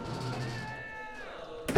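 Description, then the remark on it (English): A door creaks open with a drawn-out, wavering squeal over a low rumble as a large tape machine is pulled inside from the hall, ending in a short, sharp bump. “Oh no, he's opening the door. He's pulling the tape machine inside.”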